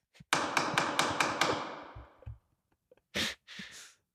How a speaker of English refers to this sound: Play the gavel sound effect.